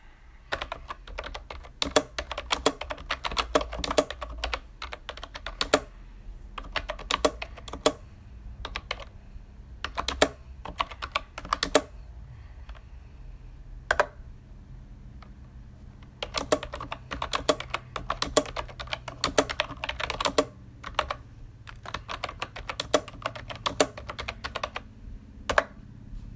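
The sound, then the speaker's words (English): Rapid, close-up clicking of keys on a computer keyboard, typed in bursts with brief pauses, over a low steady hum and with no voices. “Okay, let me try to bring my... close to the keyboard as possible.”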